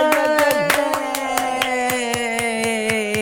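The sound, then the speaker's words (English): Steady, rhythmic hand claps from one person on a Zoom call, about three or four a second, ring out over a loud, sustained pitched tone that holds throughout; Zoom flagged it as playing music. “Did it think my applause was musical?”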